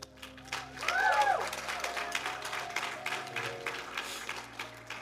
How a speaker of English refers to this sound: Come on up. Come on up. Would you give a round of applause to these two people?